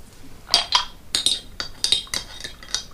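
A spoon stirring green tea, clinking against a cup in about eight bright, ringing taps at an uneven rhythm, with no one speaking.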